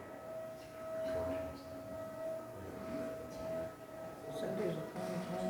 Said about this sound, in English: Somebody must have made a mess. It sounds like the vacuum.